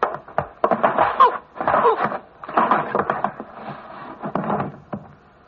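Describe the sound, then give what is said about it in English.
A wooden door being opened, with a string of creaks, bumps and knocks spread over several seconds at a moderate, uneven rhythm. “Open the door.”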